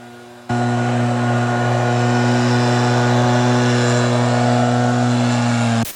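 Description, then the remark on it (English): Drilling hums loudly and steadily at the back of a house, a constant motorized drone that kicks in abruptly after a brief quiet moment and runs unbroken for several seconds with no talking. “And so, there's like some drilling going on in the back,”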